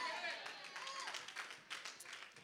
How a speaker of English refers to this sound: Four hand claps and a lot of people staring at me right now.